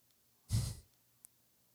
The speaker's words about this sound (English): We can hear him breathing through this little tunnel.